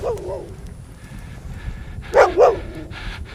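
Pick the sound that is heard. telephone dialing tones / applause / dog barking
dog barking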